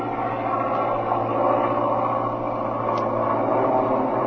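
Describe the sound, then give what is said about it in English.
A steady, loud airplane engine drone with a low, throbbing hum and broad roar as the plane is throttled back, holding an even level throughout with no voices. “All right, throttle back a little, Jim, and let Ramsey and his MEs catch up with us.”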